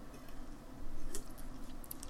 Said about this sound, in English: I'm just going to have a quick slurp here before I drop this one, because this one blows me mind.